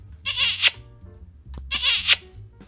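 A frog croaks twice, two raspy, buzzing calls about a second and a half apart, clear over a quiet low background hum, with no talking.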